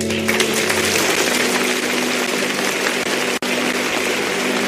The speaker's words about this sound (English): And the audience gives him a standing ovation, rising to their feet to applaud him.